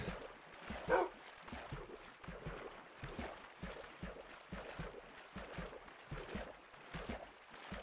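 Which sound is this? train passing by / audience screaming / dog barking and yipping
dog barking and yipping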